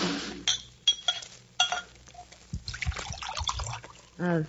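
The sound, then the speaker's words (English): A drink is poured from a bottle, trickling and splashing into a glass, with a few light clinks of glass along the way, ending with a short spoken exclamation. “Pour me, will you? Oh, sure. Oh. Say when.”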